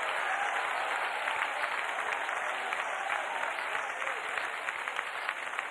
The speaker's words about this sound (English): Clap your hands.